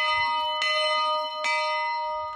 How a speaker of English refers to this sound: When Boys Camp imported this bell from a 1900 schoolhouse, it was a big deal. Finally, we had a bell that could compete across camp.